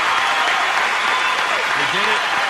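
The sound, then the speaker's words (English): A loud round of applause for the Oregon State program's first college football playoff ranking, dense and steady clapping filling the whole stretch, with a few voices calling out faintly underneath toward the end. “can I get a round of applause going here?”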